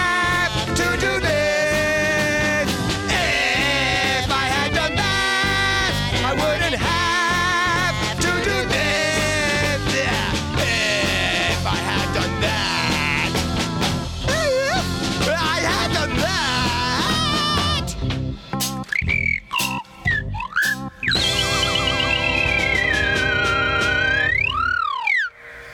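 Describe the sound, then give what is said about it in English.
A slide whistle plays swooping tones that rise and fall over busy, dense music, then carries on more exposed near the end with long sweeping glides up and down in pitch. “As I put down the slide whistle and pick up my guitar again.”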